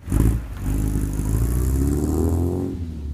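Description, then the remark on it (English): The engine of a 1967 Volvo sports car, kept in perfect running order, idles loudly, a steady low rumble with a slight uneven lope, holding level for a few seconds before easing off at the end. “Like a working 1956 Ford tractor or a 1967 Volvo sports car that Waldeyer keeps in perfect running order.”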